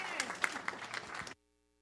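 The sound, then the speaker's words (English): A short burst of audience applause for a performing team at a church service: many hands clapping in a dense, steady patter, loud, lasting just over a second before cutting off abruptly into silence. “All right, can we give these guys a round of applause, please?”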